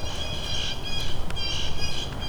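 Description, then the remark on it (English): Blue jay calls ring out as two harsh, nasal squawks about a second apart, loud and clear over a low, steady rumble of background noise, with no one talking. “And of course there are blue jays, as there is just about anywhere.”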